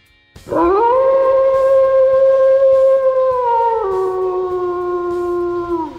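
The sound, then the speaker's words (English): A single long, mournful wolf howl from a song's intro, which became the Wolf Howl of the radio station the Wolf, swells up quickly and holds a steady, loud tone, dropping slightly lower in pitch partway through and sustaining to the end, with no talking. “And this is the first thing that played for the one tune, and it became the Wolf Howl.”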